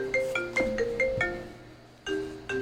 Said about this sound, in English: I knew I should have put my phone on airplane mode. That phone call was really badly timed, but I'm going to leave it in.